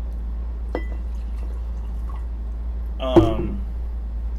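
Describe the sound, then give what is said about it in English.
A short pour of beer into a glass: one quick gurgling glug lasting under half a second, preceded by a faint click, over a steady low background hum. “Pour you a little bit there, buddy.”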